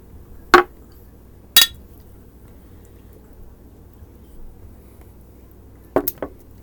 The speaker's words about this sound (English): Clink it up, brother.